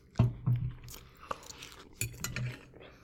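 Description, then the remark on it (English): Crisp crunching of potato chips being chewed, coming in a few irregular bursts of bites with brief pauses between, loud, with no talking. “And now I've got two pretty fucking full chips left. It's really going to be crunch time for me now.”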